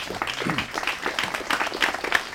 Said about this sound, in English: I just want everyone to clap for her. She is very wonderful.